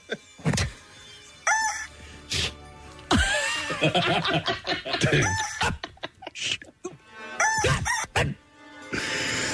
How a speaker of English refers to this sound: That should be a ringtone. Yeah, the rooster, yeah.